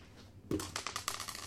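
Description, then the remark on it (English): Dice are rolled for a saving throw, clattering across a hard tabletop in a quick burst of sharp clicks that bounce and settle over about a second, fairly loud with no talking. “Roll a saving throw, Dennis”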